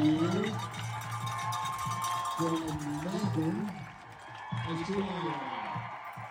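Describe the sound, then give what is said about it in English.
A crowd cheering at a race finish as a runner completes the last lap just after the cutoff: a steady, dense roar of many overlapping shouting voices that holds for several seconds, dips briefly, then swells again. “You can hear the crowd cheering.”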